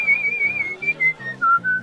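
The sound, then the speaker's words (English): Someone whistles a show tune, a clear melody of sustained notes that step gradually lower, with a soft, rhythmic low tone pulsing underneath. “Without a hint of none, I chalantly slide my hand into my full-length elk-skin duster and whistle a show tune with pitch-perfect precision.”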